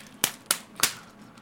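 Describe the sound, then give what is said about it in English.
Three sharp slaps of a hand against a bag, evenly spaced about a third of a second apart, crisp, with a quiet hum between them. “Handing over the bag. I got to slap it.”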